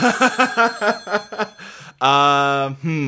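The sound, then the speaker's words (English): A phone rings from beneath a patch of concrete floor in a utility room: a quick series of short, bright tonal chirps, then a long sustained electronic ring and the start of another, with no talking. “And you can hear the ringing coming from the floor.”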